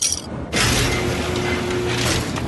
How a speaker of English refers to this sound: All right, so the security doors opened up. We're in a courtyard. Welcome to Tenpenny Tower.